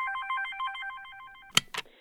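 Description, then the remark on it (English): A phone rings with a rapid warbling electronic trill for a call from a woman's mother, repeating for about a second and a half, then cuts off with two sharp clicks as the call is answered. “Eve looks at the clock and then presses answer on the phone.”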